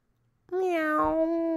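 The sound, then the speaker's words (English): A single long, drawn-out cat meow rings out loud after a brief moment of quiet, holding steady to the end with no talking. “Meow.”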